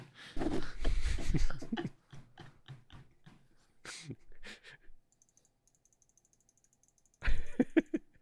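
A close, rapid run of small plastic clicks from a computer mouse, ticking in quick irregular bursts, with louder clattering handling noise before and after and a quiet pause in between.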